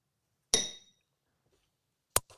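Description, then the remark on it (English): Glasses of Chicka Cherry Cola clink together in a toast, a bright ringing chime that fades over a moment, followed after a pause by a second, shorter clink. No one speaks. “Cheers, Chicka Cherry Cola. Cheers, boys. Salute.”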